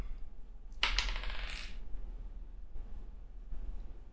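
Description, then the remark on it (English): Dice rolled on a table, coming up a one: a quick burst of bright, rattling clicks lasting about a second, then settling into quiet with only low background hum and no talking. “Oh, give me a roll, actually.”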